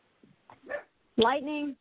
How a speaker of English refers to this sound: I'm there, but I'm trying to get my dog to stop barking.